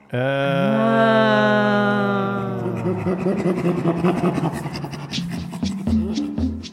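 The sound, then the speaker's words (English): Two chimpanzees, Kendall and Tammy, bent over in a huddle tickling each other, giving rhythmic, breathy panting laughter, starting with a sustained tonal vocal call before breaking into rapid huffing pulses, fairly loud, with no talking. “This odd, like, panting laughter is, like, their way of just saying, like, oh, my God, this is fun.”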